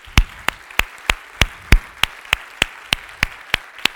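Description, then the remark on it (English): Applause for audience members working in the medical field, heard as about thirteen sharp, loud claps in a steady, evenly spaced rhythm, each one crisp and separate, with no voices. “If you are in the medical field, I just want to give you a round of applause.”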